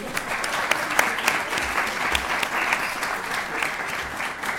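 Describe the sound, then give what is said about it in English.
A crowd gives a round of applause for someone not in the room, many hands clapping in a dense, even patter with occasional sharper claps standing out, sustained at a moderately loud level throughout without any talking. “I want to give him a round of applause, even though he's not in the room.”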